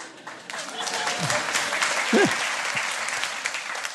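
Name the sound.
audience applause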